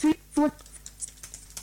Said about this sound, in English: So I'm going to use my Bluetooth keyboard, of course, because it's faster. Type my password.